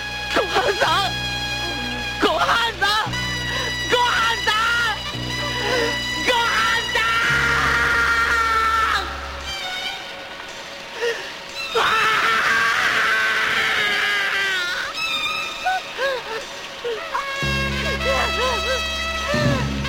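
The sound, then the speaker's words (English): A voice actor playing a male character in a special lets out loud, strained cries of pain in repeated bursts, raw and wordless, over a steady low musical drone that drops out briefly midway. “I feel like he's really screaming in pain there.”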